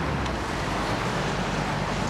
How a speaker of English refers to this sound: The Brougham Street speed limit is 60 k's. That means plenty of vehicles are doing 68. The ground shakes with the engine braking.